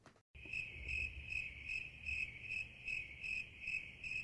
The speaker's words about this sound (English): I hope we add some sound effect there to like show that was a joke. Whew. Tough room. Tough. Cricket.